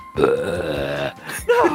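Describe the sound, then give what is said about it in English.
A voice imitates a low, gurgling burp heard in an alley of the Chicago set on a park back lot, drawn out for about a second, followed after a brief breathy pause by a shorter, rougher burp-like grunt, fairly loud. “Just, you hear like a low gurgling burp in one of the alleys in the Chicago set.”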